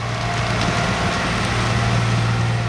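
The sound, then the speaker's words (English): A massive truck overflowing with exposed tree roots and mounds of earth rolls past, clearing BNSF Railway tracks after a recent landslide; its engine rumbles steadily, a deep droning hum under broad mechanical noise, with faint rattles and creaks of the loaded bed. “Behind where he's standing, a massive truck overflowing with exposed tree roots and mounds of earth rolls past, clearing the tracks after a recent landslide.”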